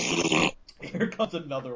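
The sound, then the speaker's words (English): A voice imitates a fart: a loud, raspy half-second blast, a brief pause, then a longer sputtering, rumbling run of buzzy mouth noises. “Oh, he sure got a lot of farts in him.”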